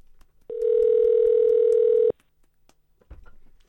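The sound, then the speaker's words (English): A loud, steady telephone dial tone holds for about a second and a half as a call is placed, then cuts off abruptly, leaving faint handling clicks and soft rustling. “You ringing him now? Yeah, I am actually.”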